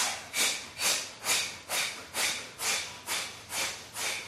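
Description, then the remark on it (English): Rapid, forceful nasal breaths of yoga bellows breathing, done while holding half boat pose (Ardha Navasana), in a steady rhythm, about nine sharp, hissing puffs in just over four seconds, each a loud burst of air with no talking. “Squeeze the legs and bellows breathing.”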